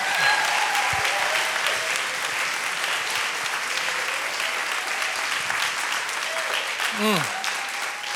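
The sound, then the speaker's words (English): A church audience at an Easter service claps steadily in celebration after reading a verse together, a dense, sustained wash of applause with no pauses, while a few brief voices and whoops rise over it near the end. “You're going to give me a little Easter swagger if you keep clapping.”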